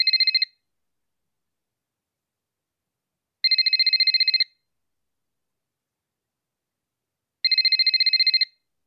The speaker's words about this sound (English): Oh, my God. A phone call. I wonder who that could be.